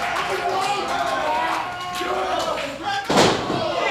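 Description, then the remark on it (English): A single heavy thud of a diving elbow drop slamming onto the wrestling mat near the end, delivered onto the champion during a wrestling match, cutting through a steady roar of crowd noise while a commentator keeps talking. “Diving elbow.”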